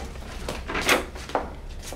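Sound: door being locked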